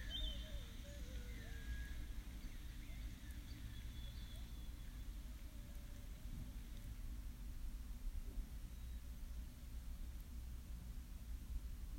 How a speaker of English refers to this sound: The hum of insects is background music.